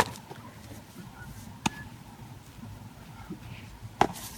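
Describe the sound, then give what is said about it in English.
Two sharp, crisp cracks of a baseball being hit, spaced a couple of seconds apart, ringing out over a steady low murmur of background noise. “The ball, that sound.”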